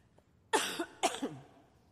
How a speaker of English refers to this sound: So, as I'm coughing my way through this,